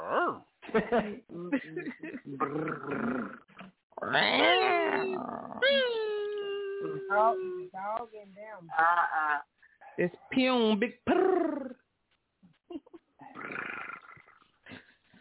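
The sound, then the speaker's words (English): Someone imitates a barking dog with several gruff, drawn-out vocal barks and howl-like yelps, interspersed with people talking and laughing. “Who barking? Y'all, I'm barking.”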